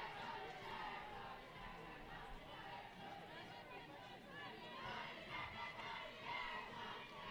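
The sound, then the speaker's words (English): A steady wash of crowd noise fills the air at an afternoon softball game, many voices chattering and calling out at once in a continuous, fairly loud hubbub with no single voice standing out. “I'm just impressed with the crowd here that's gathered this afternoon.”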